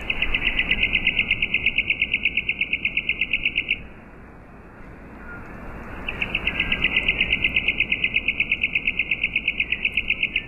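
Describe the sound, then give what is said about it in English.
A worm-eating warbler's trill, slowed down into a long, steady run of evenly spaced buzzy pulses, heard twice with a brief gap between, loud over a faint low rumble. “And worm-eating warbler, slow speed.”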